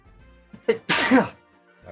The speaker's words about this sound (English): Hold on, I gotta sneeze.